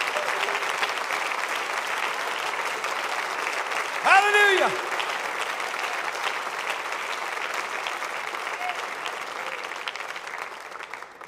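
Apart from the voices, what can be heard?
audience hand clapping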